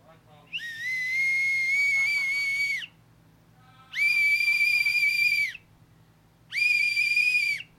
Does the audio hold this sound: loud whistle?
yes